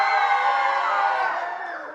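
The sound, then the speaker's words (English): A crowd shouts a "Jericho cheer" during a retelling of the fall of Jericho, a loud, sustained roar of many voices that holds steady, then gradually tapers off slightly toward the end. “Jericho cheer, Jericho cheer!”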